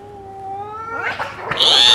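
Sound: cat yowling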